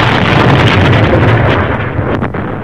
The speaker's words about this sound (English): They're interrupted by an alarm. Red alert lights go on. There's an explosion.